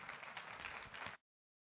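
A crowd applauds with a steady wash of clapping for just over a second before it cuts off abruptly into silence. No one speaks.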